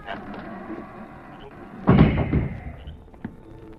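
A heavy outside cellar door, one of a pair of double doors wide enough for a wagon, is pulled open, ending in a single deep wooden thud, with faint scraping and rattling before and after.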